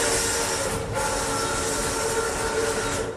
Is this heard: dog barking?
no